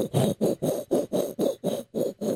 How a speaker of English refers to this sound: Now, why am I scraping the ceiling?